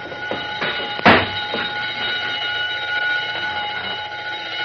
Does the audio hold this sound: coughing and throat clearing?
no